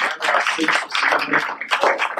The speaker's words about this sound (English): And everybody said, come on, let's give God a hand clap for you.